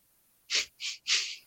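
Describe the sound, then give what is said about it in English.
Three quick, breathy coughs in a row, each a short hissy burst with only brief gaps between them, with no talking around them. “Oh, sorry. I was just coughing.”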